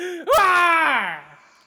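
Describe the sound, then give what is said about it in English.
A voice imitates a woman screaming in a movie theater at the very end of the credits: one loud, drawn-out cry that bursts in sharply, holds for about a second, then slides down in pitch and trails off. “Like, screaming, why?”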